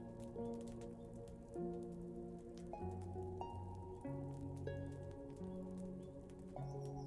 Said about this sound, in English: You continue to listen to the soft sound of the rain falling, and you feel your body drifting off into a peaceful slumber, safe and content in the tranquil treehouse.